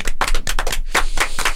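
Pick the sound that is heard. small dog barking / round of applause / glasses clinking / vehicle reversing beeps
round of applause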